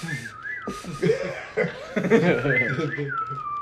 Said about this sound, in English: You're terrible at whistling. my lips are dry. No, I don't think it's a lip. I think it's those missing two front teeth you got. I think it's the whistle.